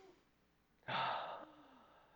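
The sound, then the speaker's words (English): A crowd, asked to breathe together, draws one deep breath, a brief, fairly loud rushing whoosh lasting about half a second before settling back into quiet, with no talking. “Everybody breathe for me.”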